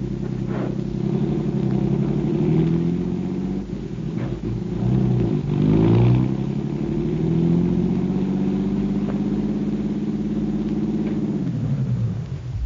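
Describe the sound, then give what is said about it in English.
A car engine drones steadily throughout as the car drives to a rooming house on Garfield, its pitch rising and falling as the vehicle accelerates and shifts, fairly loud with a low rumble underneath and no voices. “Okay, my car's downstairs. You're going to direct us to that rooming house on Garfield.”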